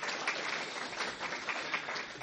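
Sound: audience applause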